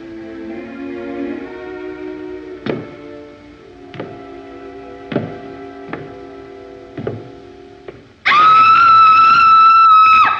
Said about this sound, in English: And she screams. She sees him and she's like, no.